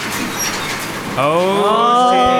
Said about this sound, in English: though, it's a shitty garage door.